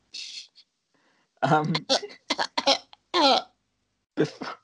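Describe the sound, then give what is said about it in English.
A voice imitates a harsh, wheezy tubercular cough into a napkin in several rough bursts, fairly loud, with a breathy hiss at the start and short voiced grunts between. “You got a napkin, you cough in it, and a bit of blood pops up.”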